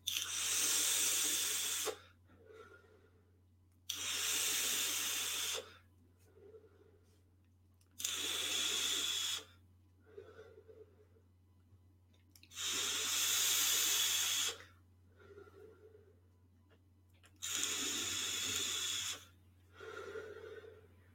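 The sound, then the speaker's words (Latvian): A 0.11-ohm vape coil set to 60 watts sizzles loudly during five evenly spaced draws, each crackling hiss lasting about two seconds, with softer breathy exhales in the pauses between. No one speaks. “Vispār uz 60 vatiem tā nobrūtot lejā.”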